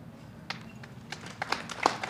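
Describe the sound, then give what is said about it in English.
Applause from an audience after a poem: a few scattered, sharp claps at first, growing denser toward the end, fairly soft overall with no voices. “Although I feel like you clapped at the first one and then there was some obligation, and I'm really thankful for that.”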